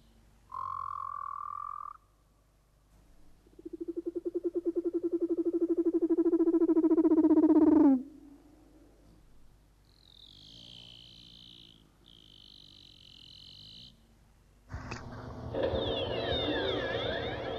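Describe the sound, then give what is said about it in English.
Underwater calls of an Antarctic leopard seal, then Ross and Weddell seals: a brief tone, then a long rising, buzzing wail, followed by high chirping trills and a harsh, dense burst of noisy calling at the end, with no talking. “First, the fierce Antarctic leopard seal, followed by the songs of the gentler Ross and Weddell seals.”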